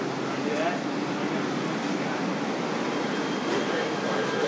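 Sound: train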